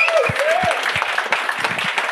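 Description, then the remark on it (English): Steady, dense applause from an audience congratulating a prize giveaway winner on a road trip show, a bright wash of many clapping hands with a few whistles rising above it and occasional low thumps underneath. “No golf claps on the road trip.”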